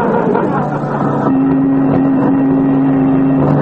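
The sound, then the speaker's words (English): A car engine drones steadily as the vehicle drives along nearing a town, a constant rumble whose hum shifts to a higher, steadier pitch partway through, with no other sounds standing out. “We're getting close to town, McGee. How can you tell? We're sideswiping more cars.”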